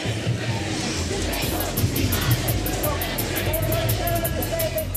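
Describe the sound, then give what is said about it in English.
A protest crowd cheers and shouts in a steady, dense roar as a bus backs off and protesters occupy the ramp and secure the gate, with a low rumble underneath and a faint, rapid pulsing tick running through the latter part. “And the cheer's gone up, the bus is backing off, and the ramp is occupied by the protesters, and the gate is secure.”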